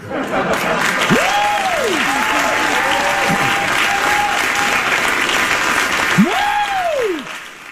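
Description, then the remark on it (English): A studio audience at the Bill Maher show applauds loudly and steadily throughout, while voices let out long rising-and-falling "woo" yells, one early and another near the end. “People at the Bill Maher show always like to yell out woo like that for some reason.”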